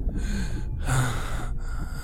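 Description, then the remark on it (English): A single sharp, airy gasp as someone pulls a restraint off and sucks in a quick breath, fairly loud, with no talking around it. “Just as before, Cup pulled the restraint off and sucked in the air.”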